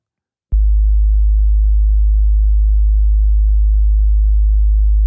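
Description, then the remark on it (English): A steady, very low 52-hertz sub-bass test tone, a pure hum that begins abruptly after a brief silence and holds at constant loudness for about four and a half seconds, with no voices. “This is, I actually pulled 52 hertz specifically, because we're going to talk about a whale that speaks at 52 hertz later.”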